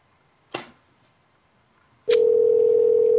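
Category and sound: signal or alarm, phone call ringing out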